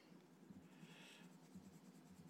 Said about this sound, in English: But I can start by putting away my colored pencils.